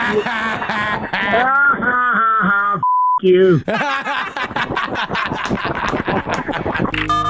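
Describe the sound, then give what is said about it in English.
A single short electronic beep, a steady pure tone lasting about a third of a second, cuts in sharply between stretches of animated talking voices. “Beep.”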